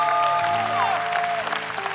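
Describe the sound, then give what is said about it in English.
An audience at a church service applauds steadily for those responding to the message of Christ, a dense wash of clapping hands at full volume, with sustained musical tones ringing underneath and a brief gliding note partway through. “Let's put our hands together for those who are responding to the message of Christ.”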